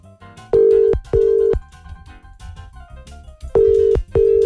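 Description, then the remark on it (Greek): An outgoing wake-up call's ringing tone: two pairs of short, steady electronic beeps, each pair quickly repeated, with a pause between pairs over faint background noise. No one speaks. “Ποιον παίρνουμε τηλέφωνο.”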